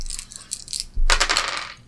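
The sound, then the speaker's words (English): Three dice are rolled in a game, clattering and rattling, first light scattered clicks, then a louder burst of tumbling and bouncing on a hard surface before settling on 4, 4 and 6, with no talking. “And you're gonna roll me your lasers. Gotta get three or lower.”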